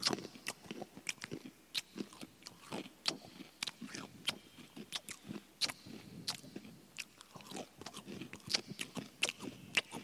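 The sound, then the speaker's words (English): Steady crunching of someone chewing food, with sharp irregular bites and crackles repeating throughout, fairly quiet with no talking. “Some people go, of course, the slapping of the lips, no, but I like the crunching.”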